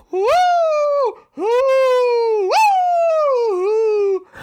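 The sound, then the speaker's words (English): Three long, loud wolf howls follow one another almost without pause, coming from all directions, each a sustained wavering tone that rises at the start and slowly slides down, clear. “Oh, oh, wolves from all directions.”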